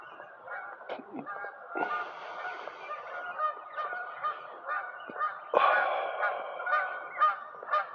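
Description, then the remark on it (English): A flock of geese honks continuously, many overlapping nasal calls crowding together with a loud burst near the end, busy with no talking. “Boy, these birds are really fighting. You hear that? Super high-pitched tweeter, not the geese.”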